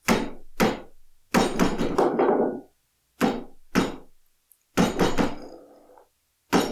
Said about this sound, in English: He just sat, swinging his legs against the chair.